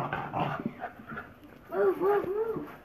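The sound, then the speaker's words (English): A dog, Jedi, a female, making playful noises while being played with: some scuffling and muffled vocal sounds, then a run of three short, rising-and-falling whines near the end. “My brother is playing with my dog.”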